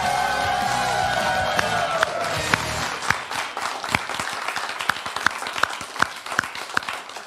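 An audience at the WDWNT show applauds steadily after the opening piano music performance, a dense patter of many hands clapping with sharp individual claps popping out, over the fading tail of a sustained musical tone at the start.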